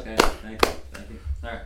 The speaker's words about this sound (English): You know, this is a big moment for him. Let's all give him a clap. He's actually plugging his podcast.